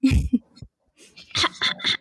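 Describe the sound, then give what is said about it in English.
A rough throat clearing: a low guttural rasp, a short pause, then three quick harsh bursts in a row, with no talking over it. “Clear your throat.”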